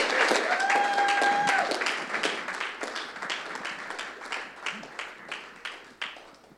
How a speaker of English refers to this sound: Why don't we just put our hands together and give them a real warm clap of appreciation.